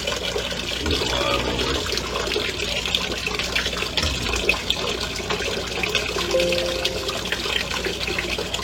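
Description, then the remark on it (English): Hot water pours steadily from a tap into a filling bathtub, a continuous rushing and splashing that holds an even level throughout. “Eventually, I'm going to finish the hot water warming up and fill it up.”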